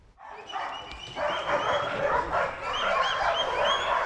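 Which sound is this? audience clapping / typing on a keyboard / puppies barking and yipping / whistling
puppies barking and yipping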